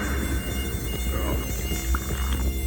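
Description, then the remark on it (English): A dense, continuous insect buzz of a swarm of wasps chasing a running camel drones steadily at a fairly loud level throughout, with a low rumbling hum beneath and no voices. “The camel's running from a swarm of wasps.”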